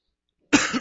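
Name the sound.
cough into the microphone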